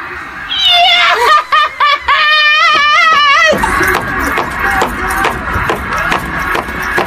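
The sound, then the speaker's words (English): Rapid, excited foot stomps thud in a quick, uneven series beneath high-pitched shrieking laughter. The laughter fades into a noisier stretch where the stomping keeps going, loud. “I think there's 16 stomps I heard there.”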